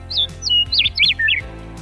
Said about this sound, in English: You betcha! A sweet little birdie!